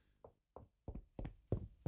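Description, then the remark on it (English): Knocking at the south entry door, about eight dull thuds that start soft and grow louder, some landing in quick pairs, with short silences between them and no voices. “I hear a knocking at the south entry.”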